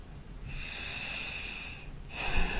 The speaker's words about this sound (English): So let's start, as we very often do, with a few slow, deep breaths.